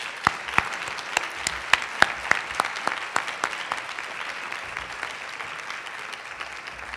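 An audience claps steadily for the people in leadership positions before an awards presentation, with dense overlapping handclaps and a few sharper, louder claps standing out early on. The applause holds fairly even, thinning slightly toward the end, with no voices heard.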